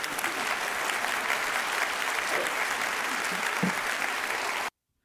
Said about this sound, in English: And it's a shame that his church applauded that.